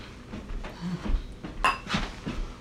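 Two glasses clink together once in a toast, a bright ring that fades quickly, set among soft clattering of dishes and handling noises.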